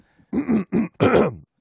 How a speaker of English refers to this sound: Hang on, I gotta clear my throat.